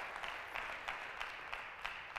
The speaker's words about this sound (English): Go ahead and give Him a hand clap of praise.